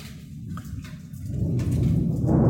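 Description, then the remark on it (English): A deep, rolling rumble of thunder swells steadily over a steady hiss of falling rain, growing louder toward the end with no voices present. “But you can hear Mother Nature roar.”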